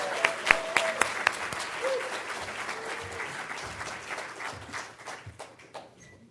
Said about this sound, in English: Hey, let's give another round of applause for both of our fantastic speakers, right?